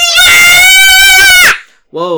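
A child lets out a piercing, sustained scream for about a second and a half, overloading the microphone and clipping harshly, then a short vocal sound follows after a brief pause.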